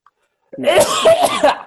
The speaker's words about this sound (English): This voice actually made me cough.